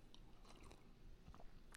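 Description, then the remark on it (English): A quiet sip of Starbucks Breakfast Blend coffee from a cup, with soft slurping and wet mouth noises over a couple of seconds, ending in a small swallow. No one speaks. “Let's grab a, take a nice big sip of whatever is in your cup.”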